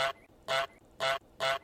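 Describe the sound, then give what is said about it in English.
A goose honks four times in a steady, evenly spaced rhythm, each honk short, loud and nasal, with no voices around it. “So let's bring that up. Let's hear the goose egg.”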